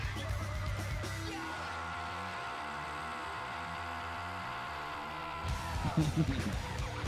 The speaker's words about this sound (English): Oh, that screaming? Yeah.